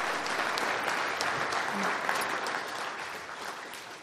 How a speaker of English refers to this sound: So let's give a clap for those people who have done that.